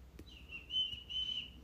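A person whistles a sustained high note that holds steady with a slight waver, quiet, with a couple of faint clicks and no talking.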